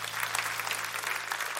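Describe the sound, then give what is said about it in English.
An audience gives the Lord a hand clap, applauding with dense, steady hand clapping, a continuous crackle of many hands at a fairly loud, even level without any speech over it. “Can we give our Lord a hand clap?”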